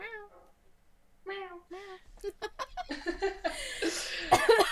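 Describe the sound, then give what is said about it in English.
A person imitates a cat, giving a few drawn-out, wavering meows, then breaks into loud, choppy bursts of laughter that build toward the end. “It just sounds like I'm purring at this point. I was gonna say. Meow.”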